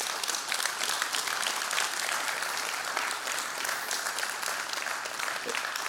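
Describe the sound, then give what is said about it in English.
An audience claps steadily throughout after a speaker's life story about faith in Jesus, a dense, sustained wash of applause from many hands with no pauses or spoken words. “It always seems a little weird when people clap at a story of my life and coming out of just emptiness and darkness, and but then celebrating the redemptive grace of Jesus.”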